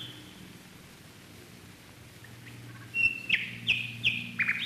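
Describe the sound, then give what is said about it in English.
A nightingale sings a quick run of bright, piercing notes and short trills over a steady low background hum. No one speaks. “You probably all know that Berlin is one of the best cities in the world to hear nightingales singing.”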